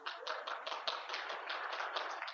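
A crowd at a worship gathering claps steadily as Montreal Canadiens fans are asked to clap their hands, many hands producing a dense, continuous patter of sharp slaps at a moderate level, with no voices over it.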